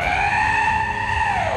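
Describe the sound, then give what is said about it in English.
A giant brown-feathered bird with a wingspan of at least a couple hundred feet, hovering on enormous flapping wings, lets out an ear-piercing, shrill scream, one loud sustained screech that holds steady and then dips slightly at the end, with no voices around it. “It surveys your group, dwarfed in its presence, and it screams out an ear-piercing shrill noise.”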